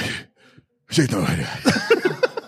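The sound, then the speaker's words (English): A man's voice imitates an old man's heavy, labored breathing, fairly loud: a short breathy puff, a pause, then a long, raspy, sighing exhale that pulses rhythmically. “And he's like heavy breathing and stuff like that.”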